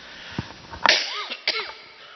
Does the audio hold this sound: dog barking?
no